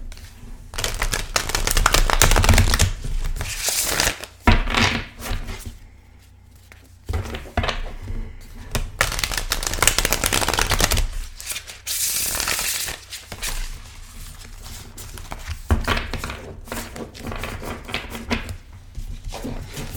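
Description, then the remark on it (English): Riffling and shuffling of a deck of tarot cards, bursts of crisp papery flutter and slaps repeating over twenty seconds with brief pauses between shuffles, no voices. “So I'll open this up, give this a shuffle, and we'll see what comes up for us this week.”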